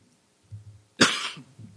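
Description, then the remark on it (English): A single sharp cough from a person getting over a cough bursts out, loud and broad, preceded by a soft low throaty murmur and trailing into quiet breathy rumbles. “Excuse me. Getting over a cough.”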